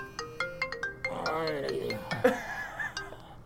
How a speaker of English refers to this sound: Look at there, we got a phone call.